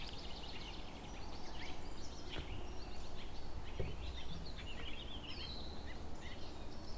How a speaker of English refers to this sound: Baltimore oriole.